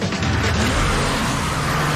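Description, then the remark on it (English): Engines of Genesis G70 luxury cars roar in a steady, loud, continuous rush, with a deep low rumble and broad noise as the separate cars race each other around a racetrack. No voices. “They're out on a racetrack and they're each in their own separate cars and they're racing.”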